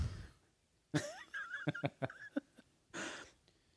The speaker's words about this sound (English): That's a proper cough.